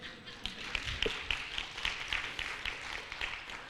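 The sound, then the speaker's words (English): A crowd claps for several seconds: a steady patter of many overlapping hand claps of moderate loudness, with a few sharper individual claps standing out and no talking over them. “Watch, with, oh, you're clapping. Go ahead, clap, because then what I'm about to read, you won't clap.”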